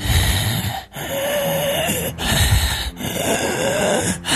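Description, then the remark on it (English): Harsh, raspy breathing up close, long rough wheezing breaths drawn one after another with only brief pauses between them, loud and strained, with no talking. “It seems humanoid, possibly, and it's breathing raspily.”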